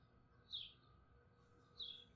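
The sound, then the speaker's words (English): Two short, high bird chirps, roughly a second apart, ring out in the early morning around Elkins over a quiet outdoor background with a low, steady rumble. The calls are fairly soft. “I really like sitting out here and documenting everything, kind of waking up here around Elkins, the bird life waking up.”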